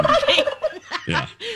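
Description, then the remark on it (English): A wild turkey gobbles loudly, a rapid, rattling burst of throaty warbling notes that tumbles quickly and then trails off, with no voices present. “I know you got a lot of wild turkeys at your place, too.”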